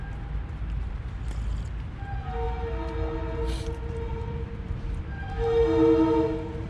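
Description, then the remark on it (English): A train whistle sounds, a sustained harmonic tone that swells and grows louder toward the end, over a steady low rumble of outdoor background noise. No one speaks. “Oh, and that train whistle reminds me that there's a sheltered spot just right up the hill that I should probably go to, so my stuff can stop getting so wet.”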